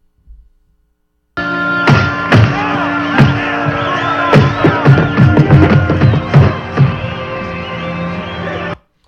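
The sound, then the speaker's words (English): Fists punching raw meat as a boxing sound effect for the film Raging Bull: heavy, fleshy punches land in an irregular flurry of about a dozen dull thuds, over a steady droning, crowd-like background that cuts off abruptly. “They're punching meat. They're beating meat.”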